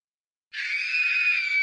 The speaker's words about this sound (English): I was awakened by a scream. Mrs. Taggart was wailing